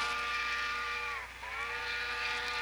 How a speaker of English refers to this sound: This is a whole damn train. We just wanted the choo-choo.